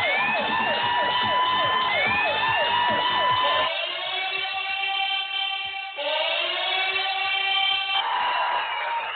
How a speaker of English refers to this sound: That buzzer came in there right on time. Sometimes shit just happens good on radio. It sounded like I actually timed that perfectly, but I didn't.